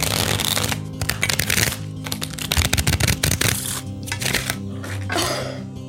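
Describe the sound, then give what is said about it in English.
Playing cards being shuffled for a card game, a dense crackling riffle that comes in several quick bursts across a few seconds, with cards spilling on the floor, fairly loud, with no one speaking. “I just tried to shuffle the cards.”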